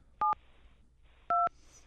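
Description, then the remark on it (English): Touch-tone telephone keypad beeps as a phone call is being dialed, two short dual-tone presses about a second apart, with a third starting just as it ends, clear over a faint hiss with no talking. “We've got the sound going on the phone, so you get to hear me dialing.”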